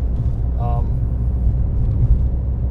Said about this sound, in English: We're in my car. Here's the gimmick. We're in my car, driving to and from work.